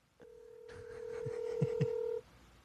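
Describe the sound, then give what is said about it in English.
A phone number being dialed on air: a steady electronic telephone tone holds for about two seconds while a few soft taps land near its end. No one speaks. “So I'm calling her now.”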